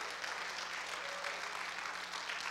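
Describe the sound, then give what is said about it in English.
An audience claps hands to the Lord in worship, a dense, steady patter of many overlapping claps filling the whole stretch at an even moderate loudness, with a faint murmur of voices underneath. “Keep clapping your hands, but open your mouth and say something.”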